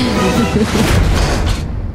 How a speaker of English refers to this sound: Wow, that was an expensive-looking explosion. I can't believe we had that in the budget.